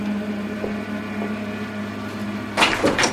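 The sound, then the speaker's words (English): A steady low mechanical hum fills the space, then near the end a door locked from the outside is tried: two quick, loud rattling clunks of the handle and frame, with no one speaking. “The door's locked from the outside.”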